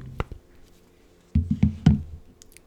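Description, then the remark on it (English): Amazon packages being delivered outside by a delivery man: a couple of short knocks, a pause, then a quick run of four heavier, low, dull thumps, like boxes being set down. No one speaks. “I can hear the guy outside delivering Amazon packages.”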